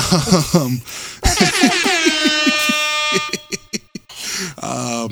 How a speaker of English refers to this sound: And yeah, I sure hope he put it in. Knowing him, it's going to be an air horn.